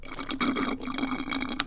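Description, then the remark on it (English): A voice imitates a babbling brook, made as a relaxation-tape sound, with a continuous gurgling, bubbling noise over a steady low hum, with quick rapid fluctuations, moderately loud, no words spoken. “It's a babbling brook. It sounded more like you finishing your Frappuccino.”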